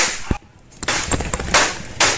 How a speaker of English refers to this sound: A camera was rolling live on the Madden 19 tournament when the shots rang out.